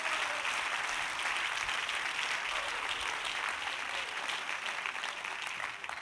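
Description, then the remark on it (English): An audience claps steadily during an evening sermon while it thunders outside, for about six seconds, a dense, even wash of many hands with no pauses and no voices, holding a fairly constant loudness before easing slightly at the end. “If you do, clap your hands and receive what I'm preaching to you tonight.”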